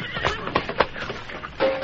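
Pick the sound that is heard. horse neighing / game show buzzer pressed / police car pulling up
horse neighing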